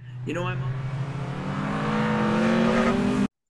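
Race car engines rev loudly, their pitch climbing sharply then holding at a steady high roar for about three seconds before cutting off abruptly.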